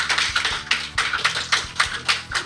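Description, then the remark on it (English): A studio audience applauds: a dense, steady patter of many hands clapping at an even level throughout, with no voices over it. “If you would, ladies and gentlemen, give Mr. John Schultz a nice round of applause.”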